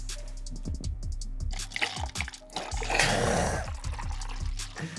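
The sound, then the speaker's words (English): Liquid glugs and splashes as a drink is poured into a glass, a steady run of bubbly trickling with irregular drips, alone and fairly loud. “Here we go. Shall pour him.”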